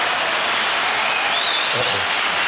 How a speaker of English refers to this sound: I'm about to say, why are we clapping for a question?